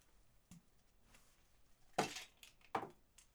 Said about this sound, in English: That's me putting that water down.